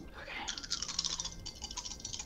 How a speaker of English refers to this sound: Should I roll my dice? Two light die and one dark die.